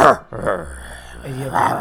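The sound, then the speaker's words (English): A person's voice makes a low, rumbling growl, imitating a rock creature, with rough voiced bursts rising and falling over about two seconds, fairly loud. “I can't make a rock growl.”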